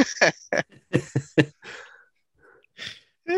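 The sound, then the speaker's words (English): Heavy mouth breathing straight into a microphone: a rapid series of harsh, puffing breaths and gasps, then a few slower, softer exhales with short pauses between them. “you're breathing a little hard, buddy.”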